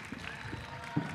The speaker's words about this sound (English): Big round of applause for these lovely ladies for having me.